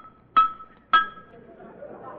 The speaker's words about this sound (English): Now, now I'll test your reflexes. I'll tap your knee with this hammer.